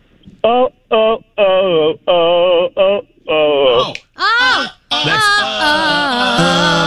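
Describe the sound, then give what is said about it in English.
A caller hums a bouncy 80s pop melody in short, evenly spaced phrases, rising into longer sliding notes, with a band-limited, phone-line tone throughout. “If you hum some of it, I bet we can tell you what it is.”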